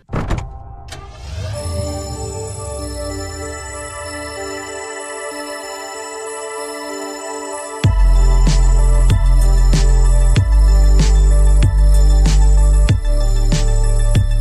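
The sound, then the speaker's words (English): A sustained, buzzing synth drone opens the piece of music from the video game Hotline Miami. Midway through, heavy bass kicks in with a deep, steady thrumming pulse and regular beats, all instrumental with no voices. “What game is that deep bass thrumming from?”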